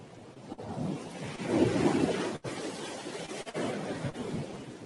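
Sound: waves on a beach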